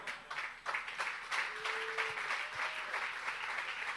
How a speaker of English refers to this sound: Did you get a good clap in?